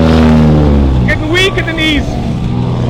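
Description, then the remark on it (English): A car engine revs loudly, its deep rumble swelling and dipping in pitch over a few seconds without stopping. “turn off the car a second because we have to talk.”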